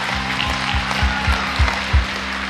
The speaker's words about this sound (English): Let's give these guys a round of applause one more time.